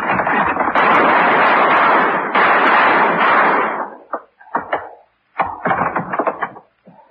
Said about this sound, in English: I'll shoot the lock, and then we go in. I hit the door.